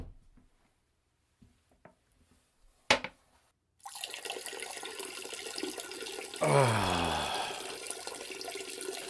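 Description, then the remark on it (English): Urine streams steadily into a toilet bowl backstage at the Blankies awards, with a continuous hissing splash that swells and shifts in pitch partway through. A few faint clicks and one sharp knock come before it. “Jesus, I gotta take a piss.”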